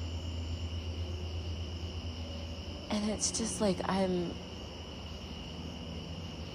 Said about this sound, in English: The crickets are singing.